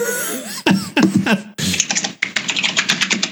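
Loud typing on a computer keyboard: quick bursts of clacking keystrokes with short pauses, then a steady run of rapid key presses toward the end.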